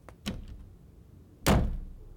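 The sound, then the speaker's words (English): A bedroom door slams shut with a heavy, booming thud that rings out briefly, preceded by a softer knock moments earlier. Loud, with no voices. “Just as he opened one of them up, Abby headed to the bedroom and slammed the door shut.”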